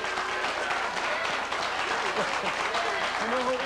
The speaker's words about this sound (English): I like that. Are you applauding that?